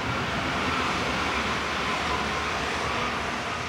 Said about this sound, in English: We turn a corner to find the train tracks in front of us and a New Silk Road train passing through, headed west to Central Asia and possibly all the way to Europe.